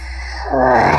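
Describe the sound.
A man crawling around on the ground, acting like a wolf, growls: a rough, voiced snarl that swells in after a quiet moment and holds steady and loud to the end, with no words spoken.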